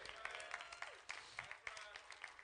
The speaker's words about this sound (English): It's a heart thing, and before y'all get all clapping and everything, it's going to get worse for us over with, so y'all, you might want to hold on to that.